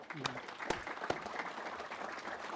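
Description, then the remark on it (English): A room full of people claps steadily for presenters, a dense wash of applause with a few sharper, louder claps standing out near the start, moderately loud. “So let's give applause to the great presenters here.”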